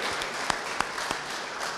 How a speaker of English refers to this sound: Saturday Light Brigade's doing all the things here. Saturday Light Brigade, big round of applause.